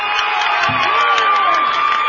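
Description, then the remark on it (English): A basketball crowd from Roger Bacon cheers in a steady, loud roar of many voices, with whoops and shouts rising over the dense noise and a high whistle-like tone running through it. “Now the crowd from Roger Bacon starting to get into it.”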